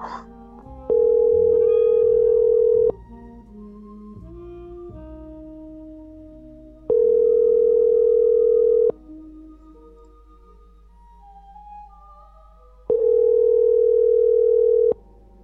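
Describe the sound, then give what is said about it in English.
A phone line rings on the caller's end as someone tries calling a man one more time: three long, steady electronic tones about two seconds each, spaced roughly six seconds apart, loud and clear over a faint low background hum. “Call him again. Alright, I'll try one more time.”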